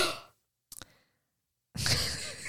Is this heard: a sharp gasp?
yes